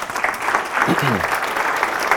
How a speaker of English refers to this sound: You guys are great. You guys are really good. Can I congratulate you? Just give yourselves a round of applause.